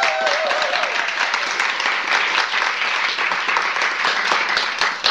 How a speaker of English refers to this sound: So, just can we all give a round of applause to Skylight Books?